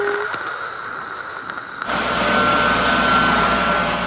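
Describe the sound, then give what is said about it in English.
A voice imitates a loud fan: after a quiet moment, a steady, breathy whooshing roar with a faint high whine starts abruptly and holds evenly for about two seconds. “You can hear a little bit of nature, and there's not many cars on the road, and I don't have to hear those stupid fans just going...”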